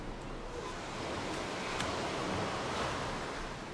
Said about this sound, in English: The tide coming in, the waves crashing at the shore.